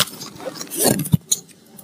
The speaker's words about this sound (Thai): คุณกล้ามากนะคุณจับกระดาษบนเครื่องอัดเสียงนะฮะก็จะมีเสียงเข้าไปเนี่ย